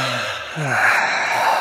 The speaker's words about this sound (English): So you just take a deep breath in, a deep sigh out of relief, as if you're very relieved.